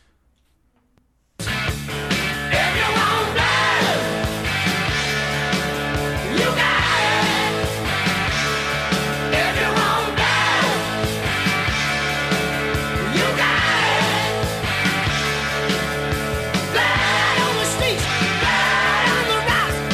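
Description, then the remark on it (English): After a second of silence, a loud live rock recording, the version featured in the film Empire Records, kicks in with screamed, yelling vocals over heavy pounding drums and distorted guitars, playing continuously at full volume. “the live version, also featured in Empire Records when the manager on Rex Manning Day has to let off some steam, so he's playing the drums to this song.”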